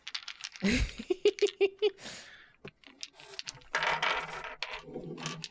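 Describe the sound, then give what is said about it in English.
Three name dice are pulled out at random and rolled: a quick burst of sharp plastic clicks and clatters tumbling across a hard surface, then a longer stretch of rattling and shuffling. “So I'm going to randomly pull 3 of my name dice.”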